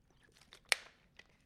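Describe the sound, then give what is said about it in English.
A crisp crunch of someone biting into Monster Munch potato snacks from Lorenz, one loud snap followed by a few quieter chewing crackles, with no talking. “So I like the Monster Munch potato snack.”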